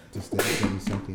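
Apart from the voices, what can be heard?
sneeze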